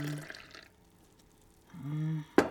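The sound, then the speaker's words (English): A man pours tea into a cup at a wooden table in a tea room, in two short pours, the second rising in pitch as the cup fills, then a sharp clink of china right at the end. Fairly quiet. “He pours tea into a cup.”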